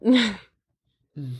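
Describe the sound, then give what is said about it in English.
A person yawns aloud, a breathy, voiced exhale that slides downward in pitch, followed by a pause and a shorter, lower vocal sound. It is fairly loud. “Sorry, I was yawning and you caught me mid-laugh from the yawn.”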